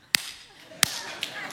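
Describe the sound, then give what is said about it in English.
During a church sermon, a preacher demonstrates how to clap: sharp, loud hand claps ring out with irregular pauses between them, two crisp strong ones followed by a lighter clap and another at the very end, each leaving a brief ringing tail. “I think one Sunday I'm gonna do a sermon on how to clap.”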